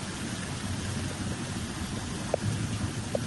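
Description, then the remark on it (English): Steady, dense rain hisses over churning floodwater around flooded cars and flooded shops, with a low watery rumble underneath and a couple of brief splashy knocks near the end. No voices are heard. “Well, you know when you get your license and they say don't drive in flooded water? This is why.”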